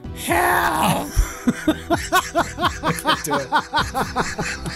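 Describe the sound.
A voice imitates a monstrous, human-like scream: a raspy, strained wail breaking into a rapid run of rhythmic, throaty groaning pulses that sound half-laughing, with no words spoken.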